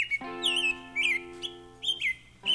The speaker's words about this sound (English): Coming up, how listening to the birds in the backyard was a turning point in my own sarcoidosis journey.